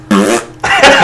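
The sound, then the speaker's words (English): A loud fart sound effect: a buzzing, raspy blast that cuts off briefly and then returns as a second noisier burst, with no talking. “One long fart noise. That was a terrible one.”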